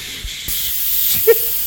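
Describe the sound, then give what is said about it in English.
A steady, airy hiss of a Lysol aerosol spray can being sprayed at a woman's feet, starting abruptly and continuing without a break, fairly loud, with a brief faint tone near the end. “She sat down and I just had a can of Lysol that I was just spraying the whole time at her feet.”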